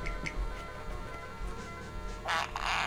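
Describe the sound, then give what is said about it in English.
A fart sound effect: a short, loud, raspy buzzing burst near the end, following a stretch of quieter faint clicks and hum. No one speaks. “Ooh, it's a smelly one.”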